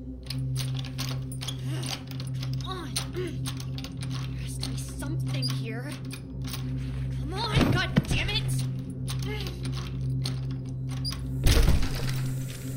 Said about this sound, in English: Finally, there's the sound of wood breaking, and it's like someone has broken the seal of an airlock in space.